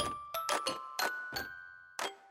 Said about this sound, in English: Hello and welcome back to Safeguarding Soundbites, where we can almost hear the sleigh bells ringing.